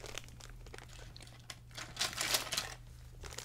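Crinkling of the plastic wrapper of a mini Chocoramo snack with scratchy bursts as it is snipped open with dog grooming scissors, peaking in a louder rustle midway, over a low steady hum with no talking.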